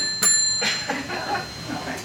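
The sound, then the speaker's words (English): A single bright bell ding rings out clearly and sustains briefly before fading, followed by a person talking. “Oh, I heard a bell.”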